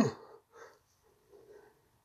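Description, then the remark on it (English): A person yawns at 11:30 at night: a sudden breathy intake followed by two softer, drawn-out voiced sighs that trail off, fairly quiet and with no speech. “Sorry, I'm yawning.”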